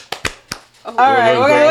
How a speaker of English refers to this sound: So we're just going to do 2 claps for therapy. 1, 2.